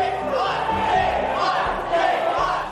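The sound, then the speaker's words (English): A large crowd of demonstrators protesting censorship shouts together while police go about their business, a continuous, loud roar of overlapping voices rising and falling in waves with a few low thuds underneath. “While the police went about their business, a huge crowd made its feelings clear.”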